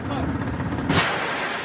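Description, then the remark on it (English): A helicopter's low, throbbing engine rumble gives way to a sudden sharp blast of rocket fire, followed by a sustained hissing roar as the rockets streak away, as the helicopter swoops in low over the ground on a combat sortie. “GoPro footage from the sortie shows the rockets firing as the copter swoops in low over the ground.”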